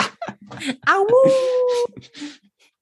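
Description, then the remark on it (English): A single drawn-out wolf howl, as a man turns into a wolf and disappears into the forest, rises and then holds a steady, tonal pitch for about a second, framed by short bursts of talking just before and after it. “Oh, and then he turns into a wolf and disappears into the forest.”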